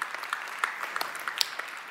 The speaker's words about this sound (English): Hey, you clap for baptisms better than you clap for me.